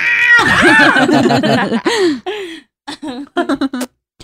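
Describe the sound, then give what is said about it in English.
A person imitates a cat with a long, wavering, yowling meow, then several shorter, clipped meows. The voice is loud, with brief pauses between the last calls. “Do your little meow. Meow. That's not a spooky cat. That cat like is in heat.”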